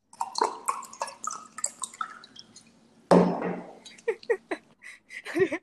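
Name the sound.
pouring water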